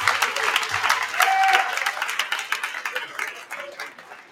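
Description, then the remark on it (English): A large West Genesee hockey crowd cheers and applauds steadily, dense clapping mixed with shouts and whoops, loud, lasting the whole stretch before tapering slightly at the end. “So I want to show the crowd, but I need you to show me some love. So West Genesee Hockey, show me some love right now.”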